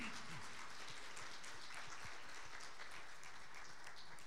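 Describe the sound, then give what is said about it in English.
An audience claps steadily for the church worship team in a dense, sustained wash of applause. Many hands patter together with no single beat, holding at an even level throughout, with faint voices mixed in. “Well, while we're talking about the worship team, how about a round of applause for our worship team?”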